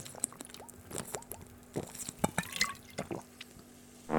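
Someone takes a drink: quiet, irregular wet sips, gulps and small liquid clicks scattered over a few seconds, with no talking.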